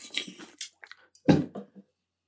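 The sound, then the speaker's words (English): Wet slurping and sipping noises as someone drinks a NOS energy drink, followed by a louder gulp and a few softer swallowing sounds, then silence. No one speaks. “Let me take another sip of NOS before I go into this rant.”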